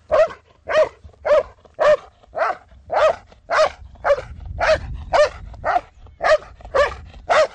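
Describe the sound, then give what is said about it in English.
A dog named Jackson barks loudly and insistently, about a dozen sharp barks in a steady, evenly spaced rhythm with no talking over them, while escorting a helper in the escort part of a trained dog exercise. “The dogs are trained to escort the way you're watching Jackson escort.”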